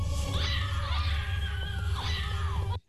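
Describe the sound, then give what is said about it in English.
Several high-pitched screams at the end of a film clip, from an actress's lead character and her friend, overlap loudly, rising and falling in long sustained wails over a low rumble for about three seconds before cutting off abruptly. “Now, I love the screams at the end of that clip, because it's, of course, …'s lead character and her friend, like, assistant, who is, I can't remember that character's name at the moment.”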